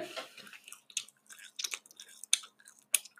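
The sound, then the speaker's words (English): Soft and sticky chewing of marshmallows: irregular wet squishes and smacks with brief pauses between them, fairly quiet, with no talking. “This episode is going to do so badly because … is just chewing 85% of the time”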